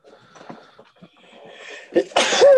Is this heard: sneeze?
yes